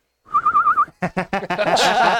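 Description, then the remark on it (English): A short, warbling whistle with a quick wavering pitch lasts about half a second, fairly loud, then a person immediately starts talking. “Feeling that fire is not going to work too well, she's going to take one of her crossbow bolts out of her pack and throw it up in the air and give a little whistle.”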